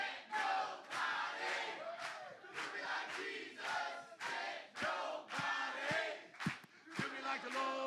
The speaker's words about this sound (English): now keep them hands clapping. Just this side, how loud can you get? Can't, but, come on this side.